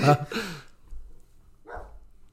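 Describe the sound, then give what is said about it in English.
A dog barks twice in quick succession, sharp, then gives one softer, shorter bark a moment later, with a low rumble underneath. “If y'all hear that, that's my son barking in the background.”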